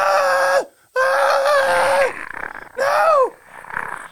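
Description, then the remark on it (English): A person voices the screech of a small, hair-covered, golem-like creature: three loud, strained shrieks, each ending in a downward pitch drop, with rough, breathy growling between the last two. “And from the bush, as you pull back the leaves for a split moment, you see this small, almost like golem-looking creature that's covered in hair, and it turns to you, and it just screeches, and it jumps on your face, and it starts mauling you.”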